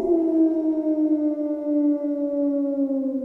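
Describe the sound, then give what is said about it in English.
A wolf howls in one long, unbroken note that slowly sinks in pitch, loud, with no other sounds or voices around it. “But before you can do anything else, you hear a familiar howl.”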